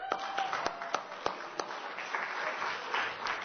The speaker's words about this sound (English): That's a great thing that we have some marriages that have lasted so long. But the reason that we applaud is because it's rare. Because it's rare in today's society.